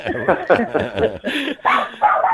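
A dog barks repeatedly in quick, uneven bursts, fairly loud, with short pauses between the yaps and no clear speech over it.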